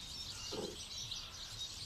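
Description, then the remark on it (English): Masses of goldfinches at two large bird feeders twitter and sing in a faint, continuous jumble of high chirps, heard outdoors with a soft background hush and no voices. “There's masses of goldfinches out there, listen, we can hear those.”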